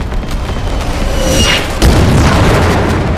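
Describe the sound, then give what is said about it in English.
Deep, rumbling booms of anti-aircraft flak bursting in a dense, continuous barrage, loud, with a sharper blast landing partway through amid a constant roar. The flak is fired from a Japanese battleship at Helldiver dive bombers that have just bombed it and are flying away. “Hell divers diving at Yamato slam her with 1,000-pound bombs and are shredded by AA on the way out, then chased to the horizon by booming flak.”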